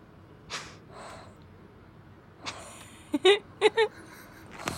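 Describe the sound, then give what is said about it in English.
A pug breathes heavily through its mouth, with a few airy huffs followed by a quick cluster of sharp, wet snorts near the end. “A lot of very calculated breathing.”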